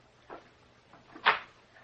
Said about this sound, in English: We hear a key turn in a door. The door unlocks.